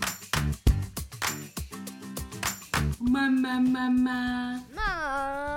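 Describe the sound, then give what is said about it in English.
A quick run of bright glass clinks, several in close succession like glasses tapped together in a toast, followed by a sustained ringing tone that swoops upward near the end. “But cheers to all moms hopefully surviving summer.”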